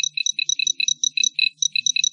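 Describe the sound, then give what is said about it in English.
Four challenge dice are rolled, rattling and clattering in a rapid, steady stream of bright, hard clicks for about two seconds, with no voices. “So go ahead and roll your 4 challenge dice.”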